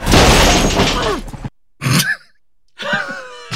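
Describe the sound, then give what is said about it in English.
In a movie, a loud, noisy crash rings out for over a second as the character Professor Megachimp crashes into a car, then after a brief pause he lets out short, strained vocal groans and grunts, fairly loud. “One is just a funny noise that Professor Megachimp makes when he crashes into a car.”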